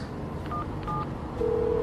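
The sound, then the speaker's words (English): A few short electronic beeps from a cell phone keypad as a number is dialed to call and warn someone, the last tone held a little longer, over a steady low background hum. “We're sitting here like idiots and you've got a ton of cell phones on you. Call her, warn her now!”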